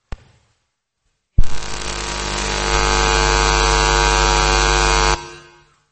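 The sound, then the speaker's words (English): A loud, steady electrical hum with a harsh buzzing edge starts abruptly after a brief click and drones for about four seconds before cutting off, with no talking. “Yeah, try to get rid of the hum. Something is humming.”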